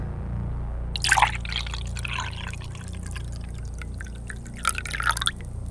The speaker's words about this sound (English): I clearly have poured something.